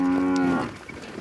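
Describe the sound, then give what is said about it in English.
A single loud moo from Indian cows pressing against a fence to be fed bananas, a steady low bellow lasting about half a second before trailing off into quiet background noise. “It includes feeding and caring for cows, and of course, abstaining from eating them.”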